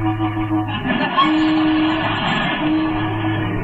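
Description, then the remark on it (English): A car's other horn sounds in two long, steady honks over a low idling engine rumble, fairly loud, with no talking, as the car pulls up at the Mountain View Auto Court to bring someone out. “They didn't hear it. Try the other one.”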